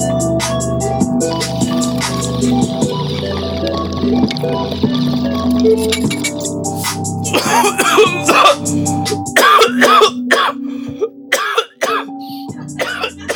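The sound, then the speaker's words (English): Someone coughs hard after hitting a dab, in a string of harsh, raspy bursts that follow a brief bubbling, gurgling sound, with steady background music playing underneath. “Trying to hit a dab now.”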